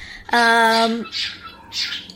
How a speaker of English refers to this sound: So in an effort to quiet the bird, we now have the bird with us.